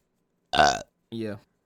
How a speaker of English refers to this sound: Yeah. I respect the burp health, but like, come on, bro, we gotta be professional.